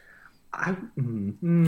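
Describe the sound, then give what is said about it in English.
A fart sound effect: three low, buzzy, sputtering blasts in quick succession, each louder than the last, the final one ending in a breathy hiss. “I got to make that fart a little louder.”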